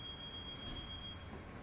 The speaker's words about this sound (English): I'm going to go along as if that alarm is not life-threatening, whatever that happened to be.